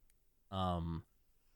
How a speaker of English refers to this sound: God damn it. I meant to mute that cough and I didn't. And now that I've mentioned it, I don't have to go back and edit it out.